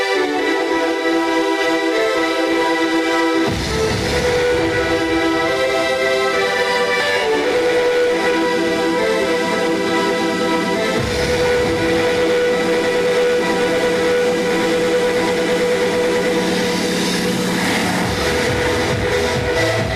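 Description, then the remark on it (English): A dance track blares over the sound system at Doug Kingsmore Stadium during a Tigers scrimmage, its sustained, buzzy synth lead soon joined by a heavy driving bass and beat that play loud and unbroken with no voices. “if you'd play what we were listening to here at Doug Kingsmore Stadium, this was blaring through the sound system as loud as they could play it as the Tigers were going through a scrimmage.”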